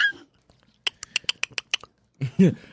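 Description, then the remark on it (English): A person imitates a dolphin with a quick run of about eight sharp, high clicking chirps, fairly loud, followed by a brief voiced squeal. “That's pretty good. Was that a dolphin?”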